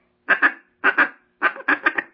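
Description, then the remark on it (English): A duck call blown to imitate quacking: short, raspy, nasal quacks in quick bursts of two, two, then about four, fairly loud, with no talking. “So they'll think it's a quacking.”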